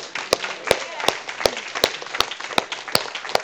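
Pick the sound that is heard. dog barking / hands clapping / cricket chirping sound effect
hands clapping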